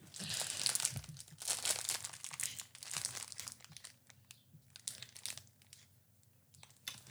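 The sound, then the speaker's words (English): Crinkling and rustling of a snack wrapper being torn open, with dense bursts of crackly plastic noise that ease into scattered softer crinkles toward the end. “I opened it.”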